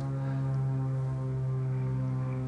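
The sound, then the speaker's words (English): A steady, low droning hum of an airplane passing overhead, holding an even tone and loudness throughout with no voices present. “We can listen to the sound of the airplane.”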